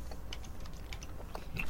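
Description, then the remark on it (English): Quiet chewing of a soft, very fluffy marshmallow with a dark chocolate outer layer, with a slight crunch, a steady run of small irregular bites and squishes with no talking over it. “What are you thinking as you munch down on that?”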